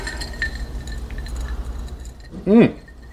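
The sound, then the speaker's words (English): Glasses clink together once in a toast near the end, a short, fairly loud burst over a quiet hum, with a brief voice sound riding along with it. “Cheers to Ryan Engle. Let's drink up and be somebody.”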